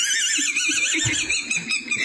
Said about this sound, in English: And the more he laughs, the more it squeaks.